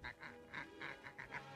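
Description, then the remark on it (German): A duck quacks rapidly in a rhythmic run of about seven nasal quacks, fairly loud, with no talking alongside, from an animated cardboard duck shadow in a TV commercial for Pril dishwashing detergent. “Das war gerade nicht der Schatten von einer echten Ente.”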